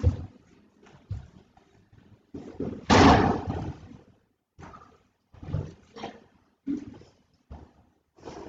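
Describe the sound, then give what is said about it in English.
A person pulls a door shut with one loud, rough scraping thud near the middle, surrounded by a few softer bumps and knocks. “do you mind just popping up and pulling that door over for us, please?”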